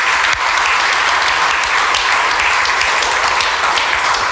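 An audience applauds steadily, a dense, loud wash of many hands clapping at once with no pauses for the whole stretch, and no one speaking over it.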